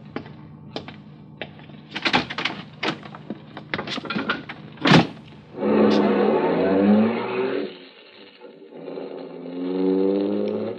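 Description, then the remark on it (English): A car carrying five men, two in front and three in back, drives up in front of the Northern Hotel, its engine humming and revving, preceded by several sharp clunks like doors shutting, with a muffled voice briefly audible under the engine noise. “And then a car drove up.”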